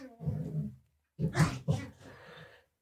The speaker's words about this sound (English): Dogs.